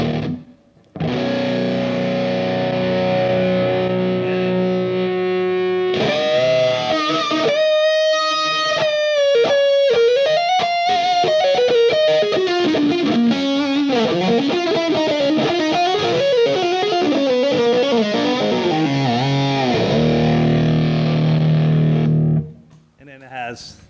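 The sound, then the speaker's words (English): An electric guitar with a little gritty distortion plays loud: a sustained held chord opens, then a bending, singing lead line rings out with long sustain before settling back to a steady note. “And then, you know, if you want to just a little distortion.”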